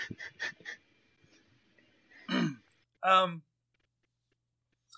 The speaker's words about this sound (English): Sorry, jeez. Bless you. Something caught my throat.